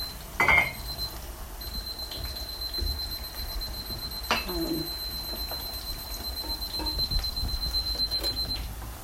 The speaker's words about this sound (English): Okay. And that beeping is pasta being done.